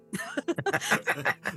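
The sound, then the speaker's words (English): A rapid run of harsh coughs, around eight short bursts in quick succession with a rough, partly voiced edge, like someone caught in a brief coughing fit. “There's like the bit that you licked up has all sorts of dust bunnies and nasties in it, and you start having a little coughing fit.”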